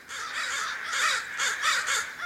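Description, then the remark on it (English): A dense chorus of crows cawing together at their night roost, harsh overlapping calls in repeated bursts from many birds, moderately loud and continuous, with no voices present. “Follow crows to their roost some autumn evening if you can, and watch these avian acrobats wheel in for the night.”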